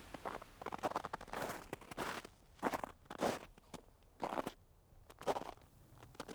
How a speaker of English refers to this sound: The sound of walking in the snow.